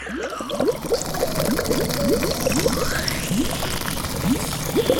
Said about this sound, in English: That's Franny's nose hose. You're about to see it in action. First, she sucks up about 50 gallons of the fizzy lake.